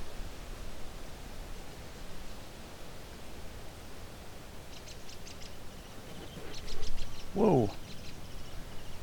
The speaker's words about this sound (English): Whoa! Just had a vulture buzz right overhead. Those loud wing flaps, I wonder if it was sitting here and took off. Or if I just caught a recording of its wing beats as it was going over the cliff here, maybe.